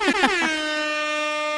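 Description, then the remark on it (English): A single loud air horn blast, starting with a few quick stuttering bursts before settling into a steady, piercing sustained tone that holds to the end. “She's my air horn. Air horn girl.”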